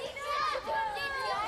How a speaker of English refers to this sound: Bedrock added a breakdown where you can hear like a crowd of kids yelling and playing